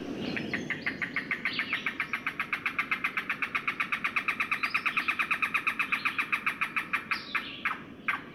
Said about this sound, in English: Cuckoos are secretive and tend to perch motionless for a long time, so finding one can be really tricky. You're more likely to hear them first.